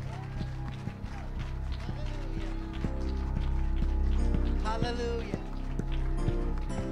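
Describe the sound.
A standing church audience claps in praise of Jesus, a dense, steady stream of sharp hand claps that runs the whole seven seconds and swells a little louder midway, with a faint murmur of voices beneath.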